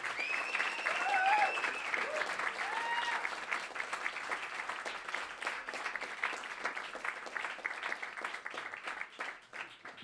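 A crowd applauds steadily for about ten seconds, dense overlapping claps with a few whoops and cheers near the start, gradually thinning toward the end.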